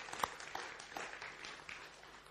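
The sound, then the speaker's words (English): A church audience claps for themselves, a dense, quiet patter of many hands with a few sharper slaps standing out, holding steady for a couple of seconds without any voices. “Give yourself a clap, because you've done really well.”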